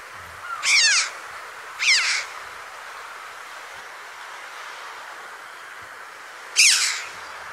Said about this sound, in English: This week's bird is the chough. Maybe we ought to say chow, because it's an onomatopoeic name. It sounds like the call it makes. So it's like a cuckoo or a chiff-chaff. Its name is like its sound, chough. But actually it's chow. Chow.